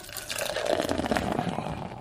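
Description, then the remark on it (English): Beer pours out in a steady, splashing stream onto a hard floor, fairly loud, a continuous gush of liquid lasting a couple of seconds with no talking over it. “I'll just pour them all out onto the floor.”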